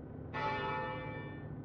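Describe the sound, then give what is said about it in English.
A ship's bell is struck once as a signal to prepare for land, its bright metallic tone ringing out clearly and then slowly fading, over a steady low rumble in the background with no one speaking. “Probably doesn't know what the bell means, to be fair.”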